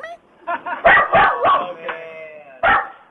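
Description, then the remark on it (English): A dog barks in a quick series of sharp yaps, about six short barks with brief gaps, fairly loud, with a final bark after a pause. “I wish the dog would stop barking.”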